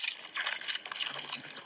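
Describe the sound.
Water gurgles and splashes steadily like a small brook, a continuous bubbly babble at moderate volume with no voices, lasting under two seconds.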